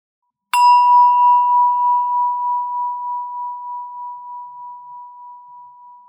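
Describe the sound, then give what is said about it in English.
A single meditation bell is struck once during a guided breathing meditation, its bright attack giving way to a clear, pure tone that hums and slowly fades over several seconds with a gentle wavering shimmer, heard alone. “Every time you hear the bell, notice where your attention is.”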